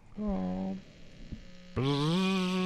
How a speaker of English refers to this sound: Is that what that buzzing noise is? Is him talking? It might be. It could be. Oh, maybe he was trying to talk earlier.